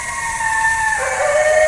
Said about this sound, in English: That one's got a real deep howl. He was about 60 yards to my right.